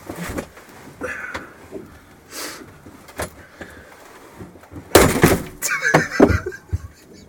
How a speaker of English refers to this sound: What did you do? Just broke the chair. Did you really? Probably. How the fuck did you break the chair? Fat ass head on it, dude.